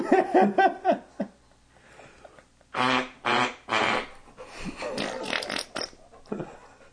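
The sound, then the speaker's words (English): A person imitates fart sounds with their cheeks: three loud, sputtering bursts, then a longer rasping run. Brief voice sounds come before them. “But for some reason, I was able to do it with my cheeks.”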